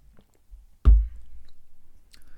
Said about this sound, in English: Just let me have a quick sip first.